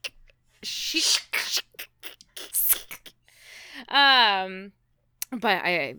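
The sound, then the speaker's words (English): A voice imitates clashing blades: a quick run of sharp, hissy mouth bursts, then two rising, ringing vocal tones that mimic metal scraping and clanging, loud and unaccompanied. “But anyways, that's the blades clashing.”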